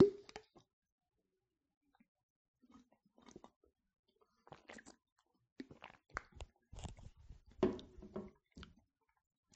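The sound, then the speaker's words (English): Someone takes a quick swig of water: a faint handling noise, a quiet pause, then a run of soft, wet gulping and mouth clicks, with no talking. “Take a quick swig of water.”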